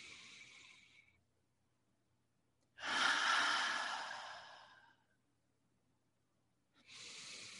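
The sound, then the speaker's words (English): Slow, deep breaths with no talking during a guided breathing exercise: a long, strong, airy inhale through the nose between softer breath sounds, separated by brief pauses of silence. “Three more, inhaling through the nose.”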